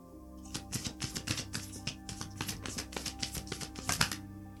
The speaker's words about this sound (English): Let me pull some moon cards and we will wrap this up. I cut the deck in half and a new romantic cycle begins. New moon in Libra shows up. Let's see what comes out when I shuffle.